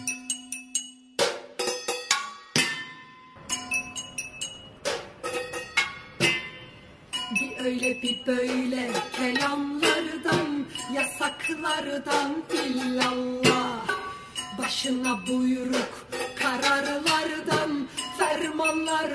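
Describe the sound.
Wooden spoons clank against pots and pans, and silverware against plates, as a protest in neighborhoods of Istanbul, Turkey: sparse sharp knocks at first, then a dense, irregular, loud clatter with a murmur of voices running underneath.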